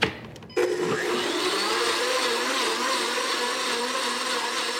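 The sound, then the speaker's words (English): A blender kicks on abruptly after a brief moment and runs steadily, its motor whirring loudly and continuously with a slight rising pitch as very hot coffee is gradually added to chocolate to make pot de creme. “Add this gradually with the blender on.”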